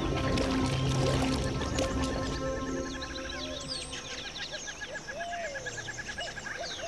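Paddle strokes splash and swish through water as a ranger paddles a little boat away, gradually fading as it moves off, with birds chirping steadily in the background.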